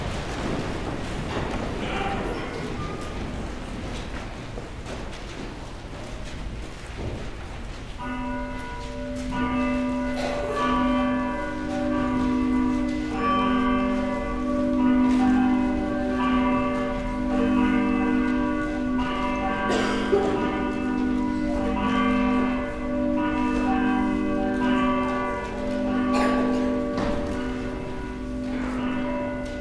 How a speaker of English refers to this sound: The bells will call us to worship.